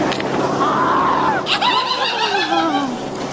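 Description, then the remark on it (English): A man, skier Yannick Bertrand, lets out a loud, strained cry of pain after a gate pole hits him in the groin, a long wavering wail that breaks sharply midway, then slides downward as it trails off. “Watch the scream. Here it is one more time.”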